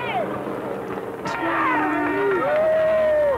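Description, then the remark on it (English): A crowd at O.J. Simpson's estate shouts and cheers loudly as Johnny Cochran comes out on the back deck and waves, with several voices rising and falling over one another and long whistle-like calls standing out above the steady din. “Johnny Cochran also came out on the back deck and waved to the crowd, which caused a lot of shouts and whistles.”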